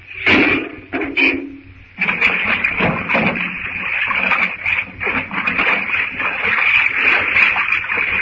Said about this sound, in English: If he opens the door, the water will rush out. And then it'll be high enough to let the boilers. When the door opened, hang on till the first rush of water is over.